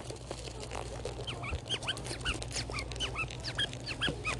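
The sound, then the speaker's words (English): Squeaky frog toys squeak over and over in quick, overlapping bursts of high, chirpy squeals, fairly loud against a low steady hum, with no talking. “I think these are supposed to squeak. They're like these little froggies.”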